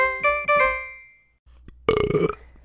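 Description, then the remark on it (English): A loud, rough burp erupts near the end, following a brief quiet gap and an earlier drawn-out, tonal sound. No one speaks. “If you hold in a fart, it can escape out your mouth.”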